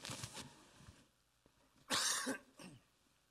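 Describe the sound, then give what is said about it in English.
A preacher coughs several times during a sermon: a couple of rough, throaty coughs first, then a sharp, loud hacking cough after a pause, followed by a softer final one. “Sorry, can I quickly cough, please?”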